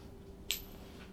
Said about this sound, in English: Deal 3 damage to a foe in range 2, then flip a coin on heads. Deal 3 damage to a foe in range 1 of you. On tails, you and all your allies in range 1 heal for 3.